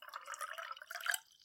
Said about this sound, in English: She got up slowly and made her way to the crystal decanter displayed on top of the imposing walnut bar. She, too, poured herself a drink.